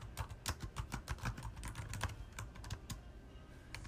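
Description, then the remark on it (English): Rapid, irregular clicking of keys on a computer keyboard, fairly quiet, with bursts of taps over a low steady background hum and no talking. “Oh, yeah, very meticulous with the typing.”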